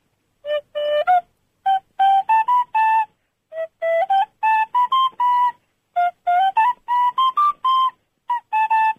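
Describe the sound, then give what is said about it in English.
A caller plays a simple tune alone on a recorder over the phone, clear reedy notes in short phrases with brief pauses between them, the melody stepping up and down in a mid-high register. “I can play the recorder.”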